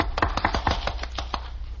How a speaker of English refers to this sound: Now you have to applaud. Okay, we applaud.